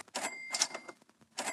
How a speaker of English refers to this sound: you're opening a cash register? I'm making money.